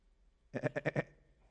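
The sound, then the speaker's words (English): A person imitates a sheep with a single wavering bleat, a quick tremolo of about five pulses lasting half a second, fairly loud, with no other talking. “I practiced that, by the way.”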